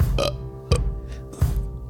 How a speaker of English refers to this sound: Keto. Keto burp.